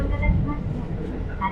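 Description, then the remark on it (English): A steady, heavy low rumble fills the inside of a moving train carriage while it rains outside, constant, with muffled voices faintly audible beneath the drone. “Part of why I'm sticking on this train is because it's raining right now, and I don't want to be moving around.”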